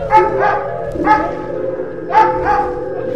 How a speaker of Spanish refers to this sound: Esos perros hambrientos y con furia están dispuestos a atacar.